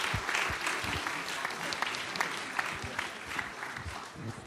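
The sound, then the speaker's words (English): A crowd applauds children steadily for the whole stretch, a dense wash of many hands clapping at a fairly even level, with no one speaking over it. “Round of applause to all those children.”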